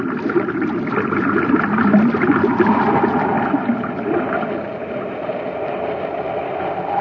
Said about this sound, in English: Commander, look at the water level against the wall of the shaft. Looks like it's rising. You're right, Hap. That pipe isn't drawing water out, it's forcing it in. Someone reversed the pumps.